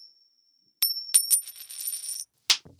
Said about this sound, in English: I'm just going to pull out two coins and put them on the table in front of us.